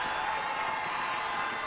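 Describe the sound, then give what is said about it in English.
A large stadium crowd at a football game roars and cheers, on their feet ahead of a pivotal fourth-down play, in a steady, dense wash of noise that holds at a constant loudness throughout, with no clear voices standing out. “And the crowd is on their feet as they know this is a huge play right now.”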